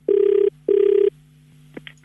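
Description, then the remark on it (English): Two long, steady ringback tones on an outgoing prank phone call, each about half a second with a short gap between, followed by faint clicks and line hum as the call connects. “So I call him from BMW South Africa.”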